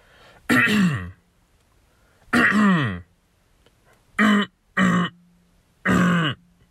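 human body sound, throat clearing

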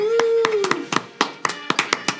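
crowd, clapping applause

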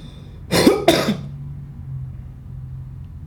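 human body sound, coughing

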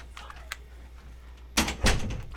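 household object, door being closed

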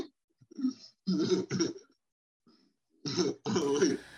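human body sound, coughing

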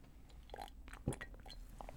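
food or drink, sipping an energy drink

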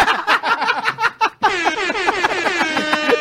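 sound effect, air horn sound effect

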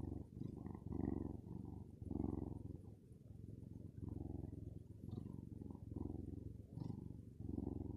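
animal, cat purring

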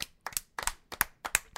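crowd, round of applause

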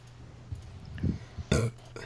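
human body sound, a burp

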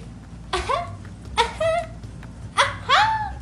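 animal, dog whimpering

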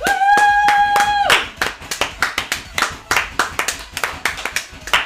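crowd, studio audience clapping

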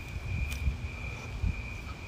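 insect, crickets chirping at night

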